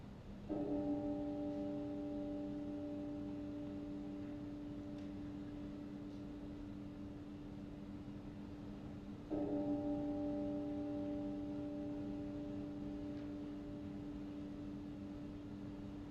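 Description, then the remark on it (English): A deep church bell tolls slowly as a death bell, rung when someone dies, struck twice about nine seconds apart, each stroke ringing out with a long, sustained hum that lingers until the next. No voices, just a low steady background. “And you will hear now how I started the death bell.”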